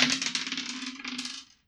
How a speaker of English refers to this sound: Give me a roll to protect someone. Come on. Slightly better dice.